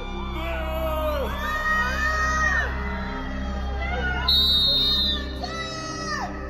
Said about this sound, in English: Outside the Virginia courthouse, Depp fans gather to cheer on their hero. Heckling Amber and her witnesses.